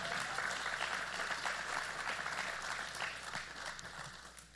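Steady audience applause, a dense wash of many hands clapping at once, loud and sustained before tapering slightly toward the end, as a couple is welcomed up to join the speakers.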